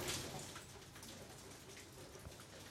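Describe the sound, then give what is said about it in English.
A steady patter of tiny hail ice pellets falling outside, a dense, hissing wash of tiny impacts with occasional sharper ticks, fairly quiet, with no voices. “Is it raining or is it hailing? That's some little ice pellets.”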